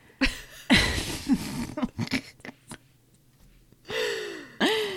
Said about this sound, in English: Bless you.